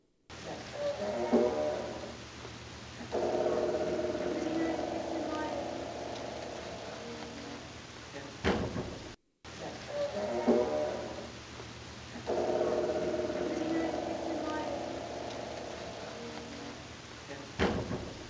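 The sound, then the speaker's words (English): A theater door between the lobby and the theater creaks open with a long, wavering groan as someone walks through, then shuts with a sharp knock; the same sequence plays twice over a steady low hum. “But I didn't see the little boy, but listen to the background of the door creaking as I walk through it in this clip.”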